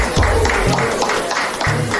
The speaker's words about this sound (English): Our networking time is over. Have your seats, ladies and gentlemen. Give yourselves a round of celebration, a round of applause.